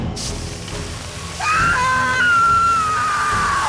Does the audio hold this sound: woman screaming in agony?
yes